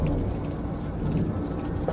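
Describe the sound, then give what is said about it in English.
Steady rain falls continuously with a dense, low rumbling hiss and faint pattering on top, unbroken, with no voices present. “No, I think it's trickling on the outside.”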